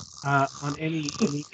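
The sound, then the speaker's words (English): A person makes an exaggerated, voiced snoring noise, a drawn-out throaty rumble lasting just over a second, with no other speech around it. “Don't snore.”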